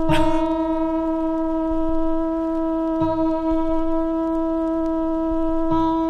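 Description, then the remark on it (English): A single guitar string is struck three times while being tuned, tightened gradually toward the correct note; each pluck lets a steady, bright, buzzy note ring out loudly and sustain at a constant pitch, with no voices. “I was hoping it would be 3 minutes of somebody tuning up a guitar”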